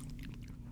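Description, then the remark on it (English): A brief, quiet sip of bourbon, with soft wet mouth sounds and no talking, lasting under a second. “Yeah, take a first sip.”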